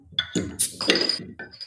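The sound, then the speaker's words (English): A beer bottle is pried open with a Batman bat-symbol bottle opener: a few sharp metallic clinks and scrapes, then a bright hiss-like burst as the cap pops off, followed by more light clinking of glass and metal. “Ladies and gentlemen, Casey has the coolest bat symbol beer bottle opener. In fact, here it is, opening up this bottle.”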